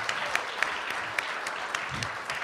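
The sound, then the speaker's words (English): An audience applauds the performers steadily, a dense wash of many hands clapping with a few sharper individual claps standing out. “Let's give another round of round of applause for them.”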